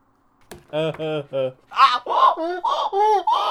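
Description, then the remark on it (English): A donkey brays: a few short honking notes, then a louder run of harsh, alternating hee-haw cries that rise and fall in pitch over a few seconds. “There's that donkey again.”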